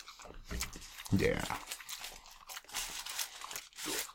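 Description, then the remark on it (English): Eating noises: crunchy bites and a wet swallow as someone gulps down a taco, with a brief voiced murmur between mouthfuls. “That was a gulp.”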